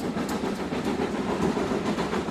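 A steady rumble of a train rolling along the rails, with faint rhythmic clatter from the wheels and no voices.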